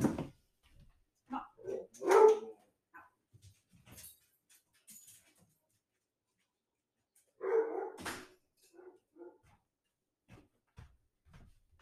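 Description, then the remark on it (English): Dogs bark in short bursts, with a few yips and whimpers between, followed by quieter clicks and shuffling sounds like a door as the dogs are let out; no one speaks. “So, one second, let me let these dogs out.”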